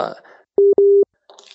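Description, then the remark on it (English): A phone line busy tone as a tie line connection drops out: two steady, pure beeps, a short one then a longer one, heard clearly in a gap between brief bits of talk at the start and end. “I think we've just lost you on the tie line.”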